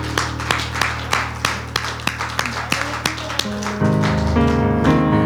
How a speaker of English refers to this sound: Give us a hand clap of praise.